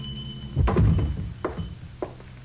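A heavy wooden door of a small, dark hardware store on the west side is pushed open after 10 at night by one of two teenage boys, with a low, rumbling thunk, followed by two softer knocks or clicks a moment apart, with no voices.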